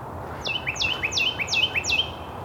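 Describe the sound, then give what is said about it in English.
A Carolina wren sings only a few feet away during the dawn chorus, a loud, clear phrase of ringing whistled notes repeated five times in a steady, rolling rhythm over soft outdoor background noise. “Carolina wren.”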